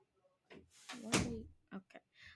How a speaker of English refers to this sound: Okay, can you close the door?